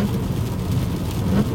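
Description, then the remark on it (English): Steady icy rain patters on a car moving slowly along the road over a constant low road rumble, an even wash of sound with no voices. “But it's treacherous because we've got icy rain conditions, and so I'm kind of slow going right now.”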